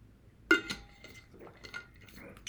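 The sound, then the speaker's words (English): Someone takes a sip of water after a workout: one sharp, ringing glassy clink, followed by a few faint, soft gulping and handling noises, with no talking. “I gotta take a water, I'm fucking dying here.”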